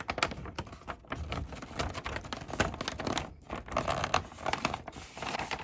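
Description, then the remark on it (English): Wrapping paper crinkles and crackles as it is creased and folded, a steady run of sharp rustles and snaps with no voices. “Make a crease right there.”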